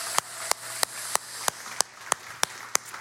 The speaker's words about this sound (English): Happy graduation weekend. Can we give a big round of applause to everybody that's graduating this weekend?